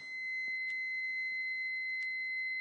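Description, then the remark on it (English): An alarm in a house, not the fire alarm, sounds a steady, shrill electronic tone that holds without pause, with a couple of faint clicks along the way and no one talking. “Some kind of alarm going off in my house.”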